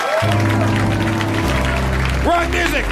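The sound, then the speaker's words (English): A crowd applauds steadily throughout at the close of a Harmontown show, the dense clapping blending with loud music, the wrong music, that shifts pitch partway through. Voices may be mixed in with the noise. “We keep clapping!”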